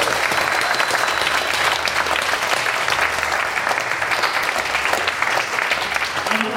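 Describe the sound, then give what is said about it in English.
A large audience claps steadily and loudly, a dense, continuous wash of applause that holds at full strength for several seconds with no voices standing out, applauding a guest at the end of a live event. “Please, can I have a massive round of applause for our amazing guest”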